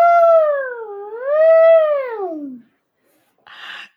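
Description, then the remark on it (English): A child's voice imitates an elephant trumpeting: one long, loud, wavering wail that rises, dips and slides downward, then a brief pause and a short breathy burst. “Can you make an elephant noise for me?”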